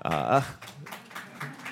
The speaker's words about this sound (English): There are... thanks, both of you, for clapping.